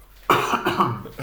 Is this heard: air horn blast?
no